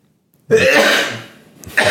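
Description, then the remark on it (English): After a moment of quiet, a single loud sneeze bursts out, a harsh explosive blast that fades quickly, with another short noise starting just at the end. “I was just going to say, I definitely have the dad sneeze.”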